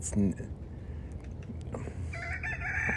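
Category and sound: bird, rooster clucking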